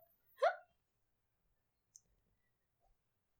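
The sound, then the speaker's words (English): A single sharp, hiccup-like vocal gulp sounds at the start, followed by a faint click and near silence, with no talking. “She sounds like she has hiccups.”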